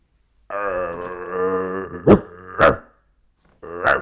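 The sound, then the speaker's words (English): A person imitates a dog, starting with a long, rumbling growl that breaks into two sharp barks, then a pause and one more loud bark. There is no other talking. “He just runs up to women, starts barking at them.”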